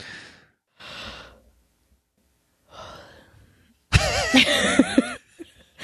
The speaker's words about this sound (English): Was that a legitimate yawn or a once upon a time yawn? You'll never know.